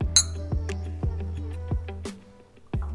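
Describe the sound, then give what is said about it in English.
A bright clink of glasses in a toast with apple cider mixed with George Dickel whiskey from Tullahoma, Tennessee, rings out near the start, followed by a second sharp clink later, over a steady low background hum with soft thumps. “Cheers.”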